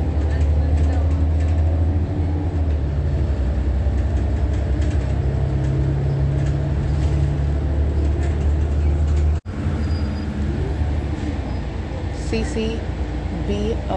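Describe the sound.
Steady low rumble of the interior of Omnitrans bus 1364 in motion at Victoria Gardens, with engine drone and road noise filling the cabin throughout, briefly cut by a sharp break midway, with faint voices murmuring underneath.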